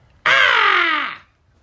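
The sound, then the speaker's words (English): A voice lets out a loud, harsh scream imitating a raptor, about one second long, with a sudden onset and a raspy, downward-sliding pitch that fades out at the end. “And he screams in your face.”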